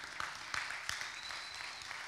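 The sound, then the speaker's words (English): Scattered, subdued applause from a small crowd, a polite smattering of hand claps with a few sharper individual claps standing out, fairly soft and steady throughout. “Thank you for that golf course hand clap.”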